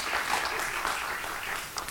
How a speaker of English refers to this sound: He won't be clapping for long. But it's kind to do it now, it really is.